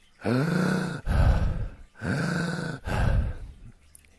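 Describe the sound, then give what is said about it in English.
Two cycles of loud, heavy, labored breathing, each a strained, voiced gasping inhale followed by a harsh rushing exhale, with no talking. A person demonstrating the effortful mouth breathing of people with emphysema, using chest and shoulder muscles. “Because emphysemics, again, as they're breathing, they're using chest muscles and shoulder muscles.”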